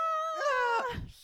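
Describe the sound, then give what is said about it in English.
A Wilhelm scream sound effect: one shrill, strained cry with a slightly falling pitch, breaking into a rough, gasping tail after about a second. “It's the stock sound effect coupled with I'm bloodied. Wilhelm scream.”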